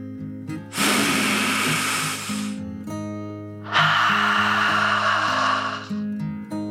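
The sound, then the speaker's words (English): A deep breath drawn in and then let out: two long, airy whooshes of about two seconds each, separated by a short pause, over a soft, steady musical backdrop. “Sadie took another deep dragon breath in and out.”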